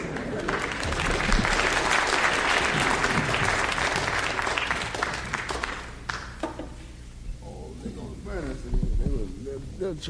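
A concert audience claps loudly for about six seconds, a dense wash of applause that thins out, followed by scattered murmurs and a few laughs from the crowd.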